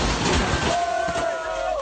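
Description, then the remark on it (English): A car rams into a store's front window with a loud smashing impact while a bunch of people cheer and shout them on. A long, sustained yell or whistle rises over the noisy commotion. “So for our audio-only listeners, what we had there was a car smashing into a store's front window with a bunch of people cheering them on.”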